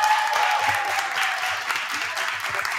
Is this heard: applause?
yes